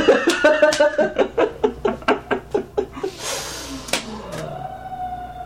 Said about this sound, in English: Sirens!